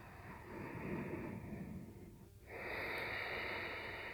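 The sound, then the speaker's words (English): Slow, hissing breaths drawn through the nostrils with the back of the throat constricted, breathing down into the belly, one long exhale and then an inhale after a brief pause. Steady and fairly loud, with no talking. “Maintaining that same constriction in the back of your throat with both your inhales and your exhales.”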